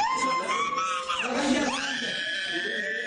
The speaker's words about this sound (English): In the hospital, one child begins to scream.